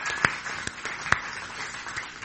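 Scattered applause from an audience welcoming four visitors from Black Sands, a soft patter of clapping with a few sharper, louder claps standing out now and then; no one speaks.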